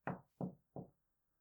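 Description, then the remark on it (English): Three firm, evenly spaced knocks on a wooden door, fairly loud, each a dull thud with a quick decay, followed by silence. “At least I haven't got one of his strange friends knocking on the door this time.”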